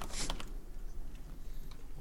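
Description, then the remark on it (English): Quick clicks of typing on a computer keyboard, a brief cluster of keystrokes at the start followed by a few softer scattered taps, fairly quiet, with no one talking. “I don't know what you're typing.”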